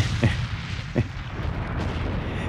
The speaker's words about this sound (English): You know, I mean, y'all heard that explosion? I heard that shit all the way in Portland.